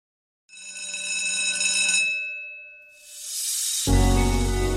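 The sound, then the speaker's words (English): A bright, high-pitched bell rings steadily for about two seconds with shimmering overtones, then fades into a loud hiss and a low, droning rumble. “Well, you heard the bell.”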